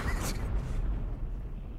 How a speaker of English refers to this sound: Honestly, I could just sit in this studio and play explosions all day.